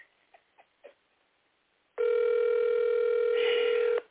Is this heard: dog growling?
no